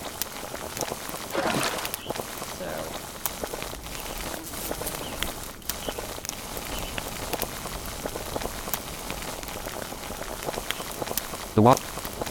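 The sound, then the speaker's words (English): Pots of water boiling with a steady, dense bubbling hiss that holds throughout, swelling briefly early on, with a short sharp clatter near the end. “Water's now boiling.”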